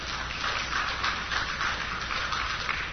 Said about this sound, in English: You can clap because it's worth clapping. It needs to be said.